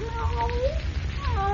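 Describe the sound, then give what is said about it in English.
A cat meows twice, the first a long, wavering cry and the second shorter and rising, heard over a steady low background hum. “Don't forget to let the cat out before you come up.”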